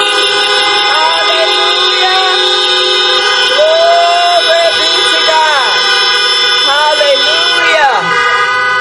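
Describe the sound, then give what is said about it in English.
A chorus of car horns honks together nonstop for several seconds, loud and overlapping, with people's voices rising and falling among them, as an audience in their cars honks to honor God at a church's 20th anniversary service. “If you know that God is good, come on and honk your horn.”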